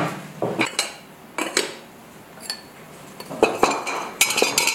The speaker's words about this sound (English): Some of my favorite videos of his are unloading the kiln, where you can hear all of the tinkly sounds of the pots and mugs and vessels as he takes them out. It's so soothing.